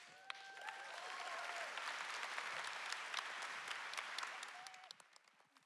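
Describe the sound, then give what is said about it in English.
An audience breaks into sustained applause for a group of women being honored as mothers, a dense wash of clapping that holds steady for several seconds before tapering off, with a few faint whoops or cheers rising above it early on. “Would y'all join me in giving these ladies one more round of applause?”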